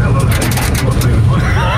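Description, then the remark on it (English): In the early morning, a heavy sanding truck rumbles steadily along a road while bursts of gritty spray hiss out, sand, rock and salt pelting a row of parked cars in a quick, clattering rush. “The sanding truck made at least four passes, spraying sand and rock and salt on all of them as it passed.”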